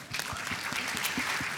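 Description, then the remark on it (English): A short burst of applause: many hands clapping together in a dense, steady patter at an even loudness, with no voices over it. “We can applaud that.”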